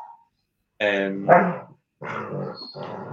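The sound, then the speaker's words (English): A dog makes growly whining noises in two drawn-out bursts, with a short gap between them, loud, as it headbutts someone in a room. “It's a headbutt by my dog.”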